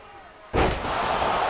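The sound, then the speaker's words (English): A single heavy body-slam impact, a Jackhammer by Roman Reigns in a wrestling video game, cuts in sharply after a quiet, murmuring stretch, followed by a loud, sustained wash of crowd noise. “Jackhammer immediately goes for the pin, holds the ankle.”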